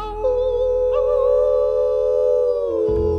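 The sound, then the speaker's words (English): A single long, loud howl holds one steady, wavering pitch for about three seconds, then drops away at the end over a low background hum. “We're gonna hoot and holler and howl at the moon.”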